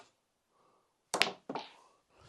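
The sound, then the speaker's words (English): A sharp click of a snooker ball being struck, followed moments later by a second knock and rattle as a red ball drops into the pocket, otherwise quiet. “Pots a red.”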